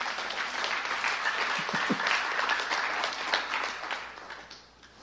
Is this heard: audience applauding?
yes